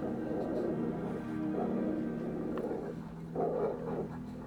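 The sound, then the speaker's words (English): Several German Shepherd search dogs bark and growl in rough, overlapping bursts outdoors at night, over a steady low rumble of background noise. “A lot of German Shepherd search dogs.”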